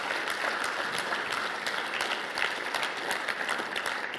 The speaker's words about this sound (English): You may applaud her because it's a big job. Thank you.